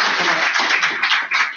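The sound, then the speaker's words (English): A crowd applauds a sheriff as he is introduced to the group, many hands clapping at once in a dense, bright wash of sound that holds at an even, fairly loud level throughout, with no voices rising above it. “So everybody, could you please give a round of applause for Sheriff Leonard?”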